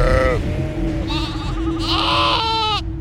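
Sheep bleat several times in quick succession, loud, their wavering, nasal cries rising and falling over a low, steady rumble in the background.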